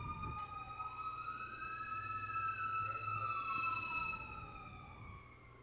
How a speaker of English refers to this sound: We're upgraded. We have fire trucks now. We usually have the four-wheeled cart thing. It's awesome.